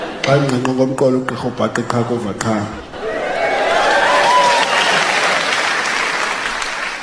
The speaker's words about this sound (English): Why would you clap? It's my language. Well, I don't clap when you speak English.